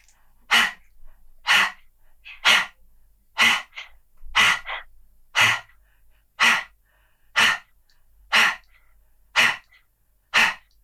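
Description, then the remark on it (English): Forceful, rapid breath-of-fire breathing: about eleven sharp, hissing exhalations in a steady rhythm, roughly one per second, each loud and breathy with short quiet gaps between. “What we're going to do now is you're going to continue with the breathing, but I just want to see how he responds to that breath of fire when you're breathing.”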